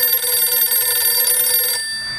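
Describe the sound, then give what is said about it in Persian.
A telephone rings steadily and loudly for nearly two seconds at Dr. Mosaddegh's home, its bright, buzzy tone sustained before cutting off abruptly, leaving a faint hum. “در این بین تلفنی به دکتر مصدق شد.”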